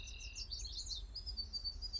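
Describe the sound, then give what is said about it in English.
Soft birdsong heard through an open window around 7 in the morning, a steady run of high twittering and warbled chirps over a low, constant background rumble, with no voices. “If my windows are open, I hear the birds.”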